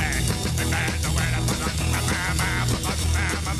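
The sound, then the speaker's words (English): A dense, steady chorus of birds chirping and calling over one another in a yard with bird feeders, loud and continuous with rapid overlapping calls and a few quack-like notes mixed in. No one speaks. “What's chirping?”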